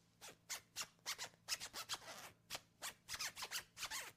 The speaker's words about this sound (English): No, that ain't no funky beat. I ain't scratching records. That's just the zipper on my hoodie from Walmart.